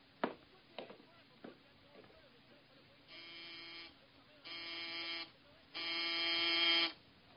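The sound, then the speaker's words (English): Late at night, a few sharp taps, then the doorbell of Mr. Maynard, treasurer of the Mercantile Loan Company, buzzes three times in steady, harsh bursts, each one longer and louder than the last. “It was pretty late, and it took quite a while for Mr. Maynard, treasurer of the Mercantile Loan Company, to answer the doorbell.”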